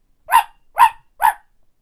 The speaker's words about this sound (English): And she barked at him until he ran away.